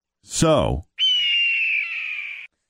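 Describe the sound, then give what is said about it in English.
A bird of prey screeches twice: a raspy, descending cry followed by a long, piercing, sustained shriek. The sound is loud and heard on its own with no talking. It is not a bald eagle, but it is the cry used in movies to sound like one. “So you hear that, and you're thinking, oh, that's a bald eagle, right?”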